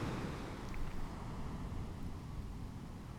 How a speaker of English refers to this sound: You might be wondering, if you've been listening for the first few episodes, you might be wondering why I'm not playing music in the background. Why am I playing beach sounds, ocean sounds? There's a point to it. It's actually relevant.